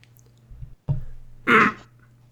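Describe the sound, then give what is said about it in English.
A single gravelly throat clearing, a short low rumble followed by a harsh rasping burst, with no speech around it; a speaker clearing the throat after a mute button failed to work. “I hit the mute button and I went to clear my throat and realized, like, halfway through clearing my throat that it didn't work.”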